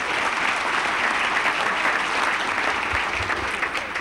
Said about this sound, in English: Well, Molly finally came over to the Twins. As you know, yeah, you can clap for him.